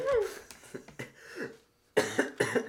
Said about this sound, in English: So he's going to have a coughing fit.